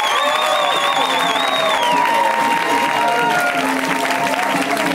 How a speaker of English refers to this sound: When it's somebody's first time, we welcome them with extra wild round of applause. So let's start that now.